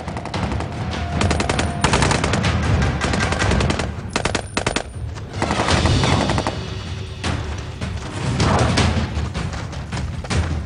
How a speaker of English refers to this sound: Now someone's shooting off fireworks behind me. God damn.